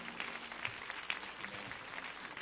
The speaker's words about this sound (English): Would you continue to clap your hands unto the Lord simply because he's worthy.